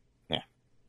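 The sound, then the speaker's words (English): A single short, throaty burp, fairly loud, lasting about a quarter second before quiet returns. “Burp.”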